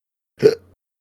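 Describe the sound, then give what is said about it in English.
A single sharp fake hiccup, voiced deliberately and exaggerated for comedic effect, short with a brief gulping catch and quick trailing off, isolated in silence. “All right, that last one was fake, just for comedic effect. I had a hiccup fit, excuse me.”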